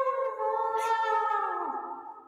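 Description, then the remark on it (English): A sustained, wavering vocal yell, made by a person trying to imitate yelling, with strong harmonics, held for about two seconds and sliding slightly downward at the end, resembling a whale or elephant call. A brief breathy burst breaks in partway through. “I was like, I'm trying to make it sound like I'm yelling, but instead it sounded like an elephant or a whale.”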